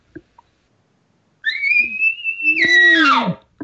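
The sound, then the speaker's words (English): An imitated short bull elk roundup bugle, the call a bull gives to a cow elk. A high, steady whistled note is held for about a second, then slides down into a lower, raspy, descending groan, heard on its own after a couple of faint clicks. “When I hit him with that cow sound, that is when I usually hear him give that little short roundup bugle.”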